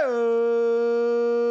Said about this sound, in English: Well, you just played howling. That's true.